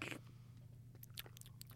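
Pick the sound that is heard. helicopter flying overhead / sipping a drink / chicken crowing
sipping a drink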